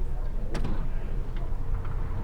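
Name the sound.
door being opened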